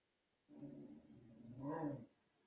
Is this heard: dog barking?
yes